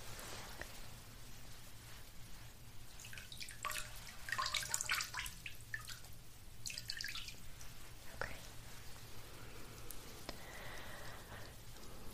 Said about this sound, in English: So I'm going to dip these into a little bit of water. It's going to be a cleansing water too.